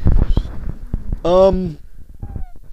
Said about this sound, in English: Did you hear that? That was a little meow. It was a hum meow. It was a tiny little hum meow.